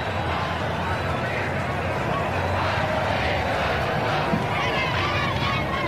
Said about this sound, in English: Jubilant crowds gather to listen as Radio Cairo announces victories.